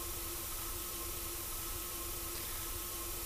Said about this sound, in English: Vocals, flanging, kind of robotic. Kind of fizzing out electronics.